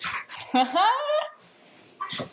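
A black-and-white French bulldog named Daisy snorts, with a brief whiny, squealing note in the middle and another quick snuffling snort a moment later.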